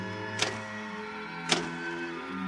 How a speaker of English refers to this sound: When suddenly, without provocation or explanation, it happened. The electric typewriter began to respond to the impulses from the machine.